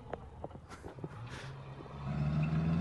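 A raggedy car's engine revs up, its low growl steadily swelling and holding loud toward the end, with some scattered clatter and road noise earlier.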